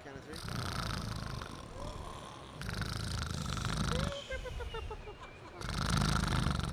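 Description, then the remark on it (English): Several voices make exaggerated snoring noises together, rhythmic rasping inhales and breathy exhales repeating in waves, fairly loud, with a brief whistling tone mid-way. “So just start snoring with us real quick.”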